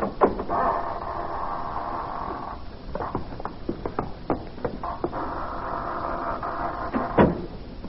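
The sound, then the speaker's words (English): A private door creaks open with a long, drawn-out groan, followed by several knocks and clunks, then creaks again and shuts with a final thump. The sound is fairly loud, with no talking. “Here we are, gentlemen. At death. Private door. Shall we enter? Pray, let's.”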